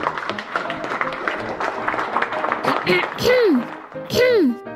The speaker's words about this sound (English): And now, ladies and gentlemen, please give a big round of applause and encourage the lovely Miss Penny.